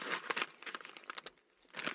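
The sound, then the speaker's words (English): Crinkling of a kangaroo jerky packet being torn open: a quick burst of dry, crackly plastic rustles and snaps, fairly loud, pausing briefly before another flurry of crinkles, with no voices. “I'm opening it.”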